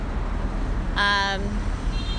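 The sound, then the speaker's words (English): A car's engine rumbles steadily as the car, now carrying three people, pulls away from the curb, with a short, bright horn-like beep sounding once partway through amid street noise. “This car's already got two people in it, so one more joins them and they're off.”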